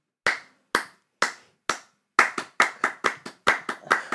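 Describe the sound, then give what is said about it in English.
Sharp, close hand claps, first four evenly spaced slower claps, then a quicker syncopated burst of uneven clapping with varied accents; no one talks. “Syncopated is when there's like start clapping.”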